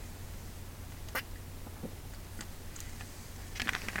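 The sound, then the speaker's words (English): Someone quietly sips a drink: a few soft slurps and gulping swallows with small mouth clicks, spaced irregularly over a low steady background hum, with no talking. “I have to take a sip because it's so dry down here.”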